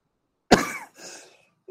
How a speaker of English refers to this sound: See, there's that cough trying to get on me. It ain't getting it. It ain't winning.